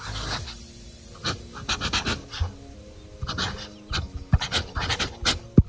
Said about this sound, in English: So in fact, I've got a notebook and pen here. I hope you have a notebook and pen. In fact, let me write so you can hear my notebook and pen. Can you hear this? I'm going to write criminals.